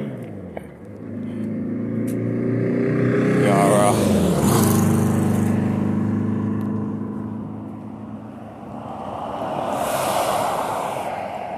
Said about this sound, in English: Yeah. Motorcycle coming down the road.